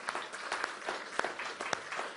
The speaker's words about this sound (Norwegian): Så vi så takknemlige for å stå sammen med våre søsken fra sannhetens ord. Halleluja, så vi gir dem ekstra applaus.